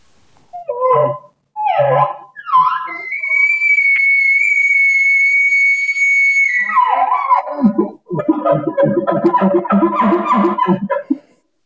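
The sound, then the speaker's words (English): A person imitates a bull elk bugle: short grunting calls, then a long, steady high-pitched whistle held for several seconds, breaking into a rapid series of rough chuckling grunts. “That could be a big bull. That bugle that I just did.”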